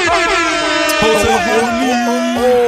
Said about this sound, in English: You know what? You don't get an applause. You get an air horn.